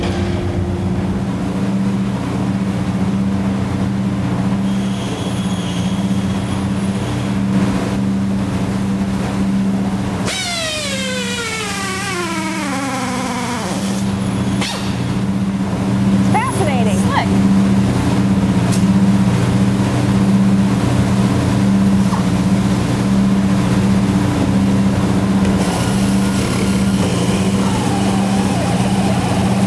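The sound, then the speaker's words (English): A Winnebago tour bus engine drones steadily while driving on a factory tour, a loud continuous low rumble with road noise, and a falling whine sweeps through partway as the vehicle shifts speed. “The rest of our factory tour was on Winnebago's tour bus.”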